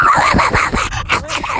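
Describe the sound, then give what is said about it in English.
A person vocally imitates a dog, making a quick run of yappy, barking noises, loud and energetic for a moment, with no real talking in between. “I bet she would say...”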